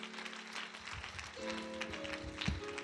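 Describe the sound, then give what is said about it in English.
An audience claps hands in praise to God in a dense, steady burst of applause, with sustained low musical tones, like an organ or keyboard, holding underneath the clapping. “Somebody will give God a hand clap of praise right there.”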